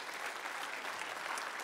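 An audience applauds, a steady wash of many hands clapping with dense, crackling texture that holds an even level throughout the short burst.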